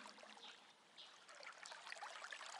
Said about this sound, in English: The sound of the flowing water is calming and healing, inviting you to sit by the stream and dip your feet in.